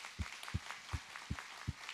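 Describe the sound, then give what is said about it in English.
An audience claps together in a steady rhythm, about five sharp, evenly spaced beats in two seconds, over a soft diffuse background of scattered applause, with no one speaking, welcoming first-time guests. “If it is your first time, we always welcome our first-time guests with a hand clap.”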